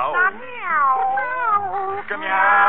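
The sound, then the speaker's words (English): Long, wavering cat meows glide up and down in pitch, running almost continuously for a few seconds, loud with a slightly muffled, old-recording tone. “Come meow, you pretty kitty.”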